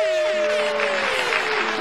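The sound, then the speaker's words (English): A crowd claps steadily in congratulation on an engagement, a dense hiss of many hands, while a sustained, slowly falling tonal whoop rides over the top. No words are spoken. “Her and the audience clap.”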